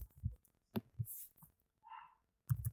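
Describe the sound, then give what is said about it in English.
Irregular bursts of muffled typing on a computer keyboard as someone types in a search query, soft low thumps and clicks in small clusters with short pauses between, fairly quiet, with no one talking. “Deadly Premonition's Switch director's cut. That's what I'm typing in, okay?”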